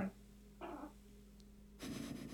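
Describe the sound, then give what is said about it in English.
A female dog lying on the ground growls in two short, rough rumbling bursts, with a quiet pause between them over a steady low background hum, as she senses somebody near the house. No one speaks. “I'm laughing at your dog. Oh, you can hear her.”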